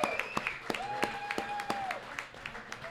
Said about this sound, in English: First of all, let's give a round of applause to the UC football team and all those athletes, 10-0. Yes.